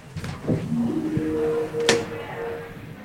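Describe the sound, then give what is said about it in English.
A revolving door at the entrance of the Museum of Science turns in early December, with a sustained squeaky whine, a few dull thumps and a sharp clack partway through, all over steady low background noise. “Do, do, do, revolving door.”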